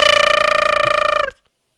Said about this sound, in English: Your phone's ringing.